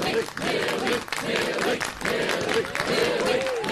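A large crowd at a show cheers and applauds loudly and steadily, with dense clapping and excited shouts and whoops rising above the roar throughout.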